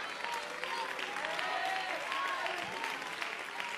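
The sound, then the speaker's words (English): A church audience claps hands in a dense, steady wash of applause, with scattered voices shouting and calling on the name of the Lord beneath the continuous clapping. “But if somebody in this place tonight will get on their feet, lift their hands, lift their voice, clap their hands, call on the name of the Lord.”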